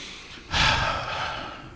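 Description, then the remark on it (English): A single deep inhale taken close to the microphone, a sudden airy rush of breath that swells in and then trails off slowly, with no talking. “Do me one quick favor on the mic. Take a deep breath.”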